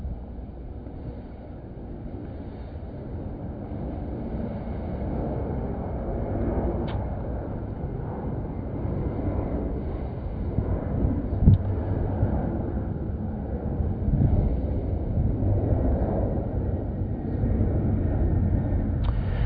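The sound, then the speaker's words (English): A steady, deep engine roar rumbles overhead for about twenty seconds, broad and droning with slight swells, like a plane passing above with no one speaking. “Since our graduation, we don't have to be in a hurry and we can wait for planes to fly over.”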